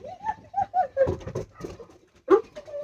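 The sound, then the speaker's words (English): A dog, reacting to a squirrel it just heard, makes a rapid series of excited, high-pitched yips and whines broken by a few harsher, louder barks, with short pauses between bursts and no talking. “My dog is going nuts because he just heard a squirrel.”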